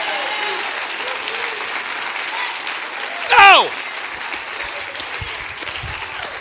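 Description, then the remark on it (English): A church audience claps steadily throughout, a dense wash of applause filling the room, with a voice briefly rising loudly above it near the middle. “Come on, clap your hands real big.”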